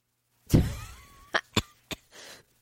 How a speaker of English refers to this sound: Oh my God. I shouldn't be coughing from laughing.